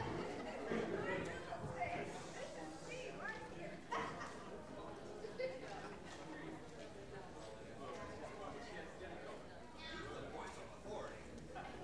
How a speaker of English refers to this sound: Sounds like we have a whole crowd over there too.